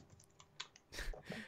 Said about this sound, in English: I need a pencil. I'll write that down. Oh, I got a pencil. Boom.